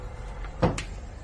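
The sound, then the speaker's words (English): A motorized flap on an accessible balcony folds down as the balcony door opens, operated by a switch on the wall, on the private island of Ocean Key. It makes a single short clunk and a quick, lighter swish right after, set against a steady low background hum, with no one talking. “The flap folds down.”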